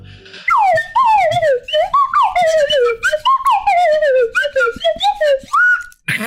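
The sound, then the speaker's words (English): A whistle plays a short Christmas melody, its loud, reedy notes swooping and wavering through a run of phrases before settling on a final held tone that cuts off abruptly. “Is it your whistle again? No, because that's here. There's the Flute of Joy.”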